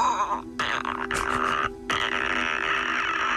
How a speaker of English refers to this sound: But there's these monsters in it called clickers, which is a stage of infection they get to, and the clicking is the noise they make when they're hunting you.